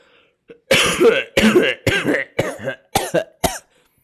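A run of about six deliberate, throaty coughs in quick succession, fairly loud, each short and harsh with brief pauses between, deliberately forced rather than natural. No talking.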